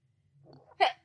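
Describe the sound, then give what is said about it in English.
A soft, breathy intake builds up and then breaks into a sharp, explosive, loud sneeze, with another abrupt burst of sound right at the end. “Excuse me. Bless you.”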